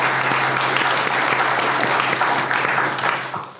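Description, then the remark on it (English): An audience claps for the panelists of a panel discussion on transportation, a dense, sustained wash of applause that holds strong for a few seconds before starting to taper off at the end. “Let me get a round of applause for our panelists and the inside.”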